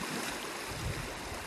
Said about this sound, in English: Downstream now, I am in this absolutely amazing riffly water where if I was a fish, I'd be hanging out here because I know there's bugs, there's structure, there's cover from above with the ripples and the bubbles. And there's lots of oxygen.